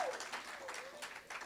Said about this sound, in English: There you go. That was a weak applause. Next time.